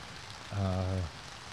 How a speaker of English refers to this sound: Hoping that this rain comes to an end, but it's been going pretty solid.